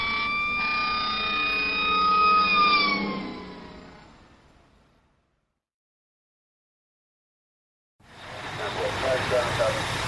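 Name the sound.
emergency vehicle sirens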